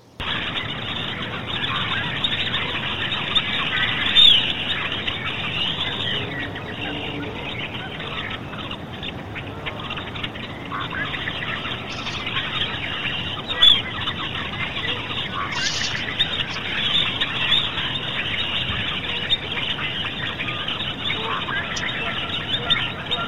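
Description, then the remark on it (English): Many birds call and chirp continuously over a dense outdoor background by an empty road, McElwee Road, recorded during the day, with a few sharper calls standing out, while a man faintly sings in the background. “There's a lot of birds in there, but you can actually hear a guy singing in the background on an empty road.”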